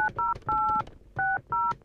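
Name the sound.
telephone number being dialed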